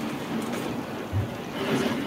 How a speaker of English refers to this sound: There's a massive thunderstorm has started outside our place. Yeah, it's like full on hail.